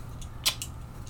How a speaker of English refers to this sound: So while I've been sitting here shuffling these cards, there's a couple that have just popped out to me throughout the shuffling that, I don't know, maybe it'll come up as important later.